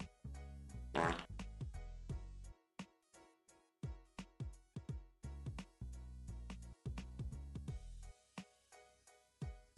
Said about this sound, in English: We got the fart board. Fart board for roadshow.